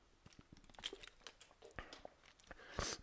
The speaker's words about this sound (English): So I was gonna take a sip of water here.